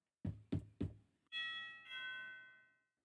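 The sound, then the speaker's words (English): Three firm, evenly spaced knocks on a wooden door, loud, followed by a ringing two-note doorbell chime that slowly fades out. “At this moment, there is a knock at the door.”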